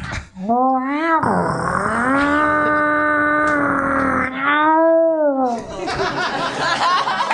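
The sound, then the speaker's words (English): A voice imitates a chainsaw and a lawnmower together: a loud buzzing vocal drone that revs up, holds a steady whine, revs again, then breaks into a rough sputtering rattle. “can you open the door, but also do a chainsaw and a lawnmower at the same time?”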